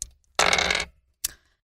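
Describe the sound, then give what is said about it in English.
Percentile dice clatter across a tabletop in a short rattle, followed by a single sharp clack as one settles. A faint tap comes just before the roll, with no talking. “Roll me percentile dice, please.”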